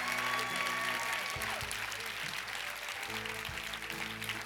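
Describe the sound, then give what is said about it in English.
A crowd claps steadily and loudly for several seconds as praise to Jesus, a dense, even wash of applause with sustained musical tones humming underneath. “Come on, let's give Jesus some praise.”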